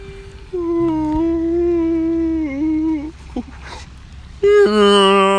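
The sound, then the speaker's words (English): A person imitates a whale call with a long, wavering moan that dips and bends, then breaks off into a brief second, higher and louder hum. “They just make their whale noises, you know?”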